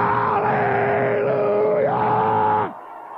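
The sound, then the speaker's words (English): A person lets out one loud, deep, prolonged roar, a rough, steady-pitched voice held for nearly three seconds before cutting off abruptly into quiet. “I'm roaring!”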